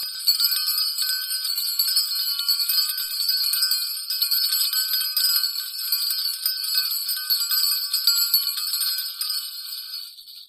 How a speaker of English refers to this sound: Mardi Gras sounds and games are not what you would typically expect. There's not a live band, there might be a DJ, but the most prominent sounds of the Mardi Gras chase and games are the bells.